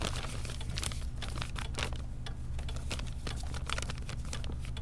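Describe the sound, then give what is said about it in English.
Crumpled paper forms crinkle and rustle in quick, irregular bursts as they are handled, steady over a low background hum with no voices. “They were crumpled up in the back of his drawer.”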